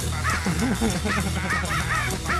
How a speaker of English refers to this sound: Yeah, bird noise.